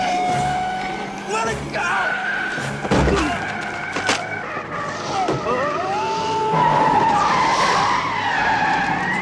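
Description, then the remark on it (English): Tires squeal and skid in long sustained screeches amid roaring engines and sharp impacts, a loud, chaotic car chase through a tunnel with brief shouts breaking through, echoing. “Marty going after Biff one last time in 1955 to get the magazine, I thought was enjoyable to watch. The whole tunnel chase”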